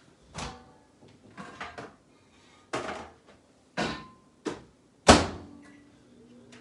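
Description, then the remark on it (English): A microwave door is handled as food is put in to heat: a series of sharp clunks and clicks as it opens and shuts, ending in one loud slam, with no talking. “Let's put it in the microwave.”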